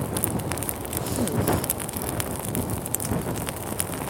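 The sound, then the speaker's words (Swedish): Dense, steady crackling of a campfire, with irregular pops and snaps over a broad hiss, continuing throughout without any voices. “Ni hör ju alltså det här underbara sprakandet.”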